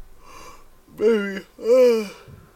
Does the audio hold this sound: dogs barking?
no